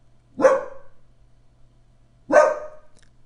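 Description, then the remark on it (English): Dogs barking, two sharp, loud barks about two seconds apart, with quiet in between and no talking. “Again, my reading a fantasy, triggering something in my dogs.”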